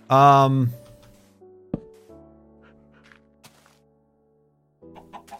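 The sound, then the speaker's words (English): A chicken being shooed away gives a loud, brief clucking squawk at the start, followed by a sharp thump and quieter scattered sounds, with a voice briefly near the end. “I knew this chicken was gonna be annoying, and he's...”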